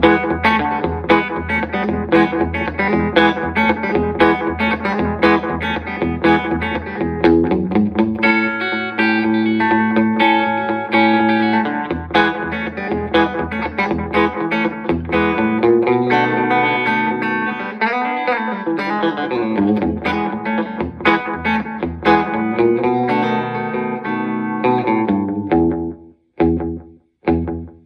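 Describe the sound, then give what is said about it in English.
An electric guitar plays twangy rockabilly, Sun-era-style licks through a Boss DM-2 delay pedal with the echo set a little louder, giving a slapback effect, each note trailed by a quick echo; loud, with a few final stabs before it cuts off. “Set the echo a little louder and do a little more, you know, kind of Sun era stuff.”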